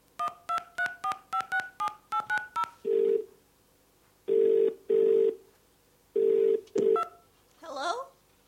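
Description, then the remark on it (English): A quick run of about ten touch-tone dialing beeps, followed by several low, steady ringback tones in spaced bursts, and then a brief voice answers at the end. “Give me my parents on the space phone. Calling Mr. and Mrs. Billericay and Majorca Phosphorus.”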